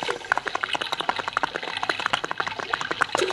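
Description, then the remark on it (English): Steady splashing and babbling of fast-moving creek water at a bridge that the water has washed out, a dense stream of small irregular gurgles and spatters running continuously without a break, with no voices. “Hey, water's most taken that bridge out”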